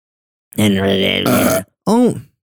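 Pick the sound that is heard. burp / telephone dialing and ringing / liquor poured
burp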